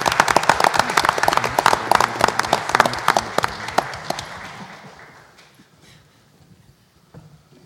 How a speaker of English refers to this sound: And that concludes this evening's recognition. So let's give our kids another round of applause.